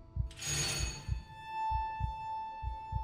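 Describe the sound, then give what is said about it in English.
A doorbell at 35 to 36 Little Newport Street rings once at 6:50 p.m. with a bright burst, its clear metallic tones lingering and slowly fading, while soft low thumps pulse steadily underneath. “At 6:50 p.m, he rang the doorbell of 35 to 36 Little Newport Street.”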